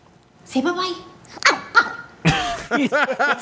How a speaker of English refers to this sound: Yeah. Two barks. I like that dog.